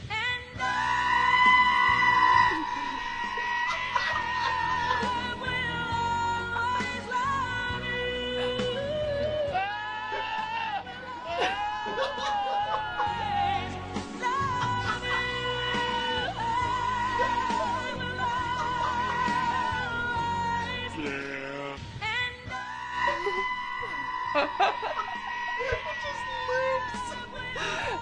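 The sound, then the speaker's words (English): Goats bleat loudly over a pop ballad, their wavering, nasal cries repeating throughout and taking over the sung melody line while the music plays steadily underneath. “It's way better with oh the goats.”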